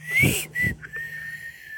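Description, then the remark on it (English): Someone whistles a short melodic phrase in the style of a Western film theme: a sliding note, a brief breathy pause, then a long sustained tone, clear with no talking. “I mean, so you're walking down the street, someone's whistling as you're walking.”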